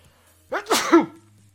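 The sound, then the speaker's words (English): A single loud sneeze with a sharp inhaled buildup and a breathy burst, heard on its own with no talking. “Yeah, I didn't have a chance to hit that sneeze button.”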